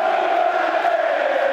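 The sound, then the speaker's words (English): A single football fan bellows a long, loud heckle at the player Jed as he warms up, his raised voice cutting over the steady murmur of a large crowd at the Den, Millwall's stadium. “A refined voice, as you can detect. Bit of stick for Jed warming up.”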